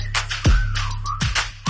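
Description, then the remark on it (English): A human whistle holds a sustained, gently sliding note over a booming bass beat with sharp percussive hits, loud and up front in the music. “Damn, that ass fat, had to whistle like.”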